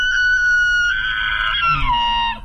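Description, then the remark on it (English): A bull elk bugles: one long, high, whistling tone held steady, then sliding downward at the end, with a lower grunting rumble underneath near the close. “I think that's a huge monster bull elk. Congratulations.”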